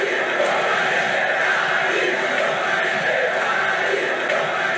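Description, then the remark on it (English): A large crowd chants together, led by Muhammad Ali, a chant meaning "Ali, kill him", a dense, steady wash of many voices holding at an even, fairly loud level throughout, with no single voice standing out. “Everywhere Ali went, all the time he was there, on every street corner, he would lead the crowd in those chants.”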